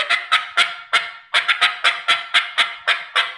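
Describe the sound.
Rapid, loud run of sharp, choppy clucks in irregular bursts, a turkey call mimicking hen cutting, about a dozen notes with no talking.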